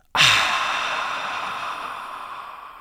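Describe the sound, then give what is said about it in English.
A single forceful open-mouthed exhale in a breathing exercise, emptying the lungs after a big inhale through the nose with mouth and throat open, a deep breathy hiss that starts abruptly and fades slowly over about three seconds, with no talking. “It's a very deep hiss. That's the sound that we want.”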